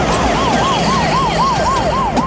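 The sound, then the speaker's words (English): An ambulance siren blares loud in a fast, repeating yelp, rising and falling several times, over a low rumble of street traffic, as the ambulance races past on a city street. “On a city street, we see an ambulance race past”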